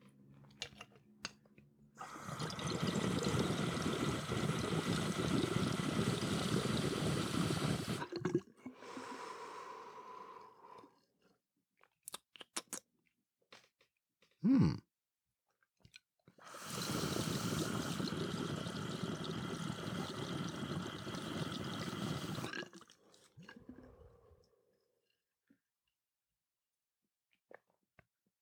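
Water bubbles and rushes through a bong with a spiral piece in the middle, spinning down after a hit is taken, in two long, steady bursts lasting several seconds each, with quieter gurgling and a brief sharp noise in between. Nobody speaks.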